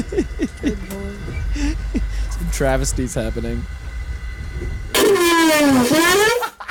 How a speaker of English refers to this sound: It's so explosive. Like, it just bursts out. You're getting out. Hit by a Russian train. So apparently this is a toilet on a Russian train that... Yeah.